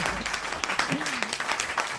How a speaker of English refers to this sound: Yay! Oh, there's our clapping. I was just waiting for that.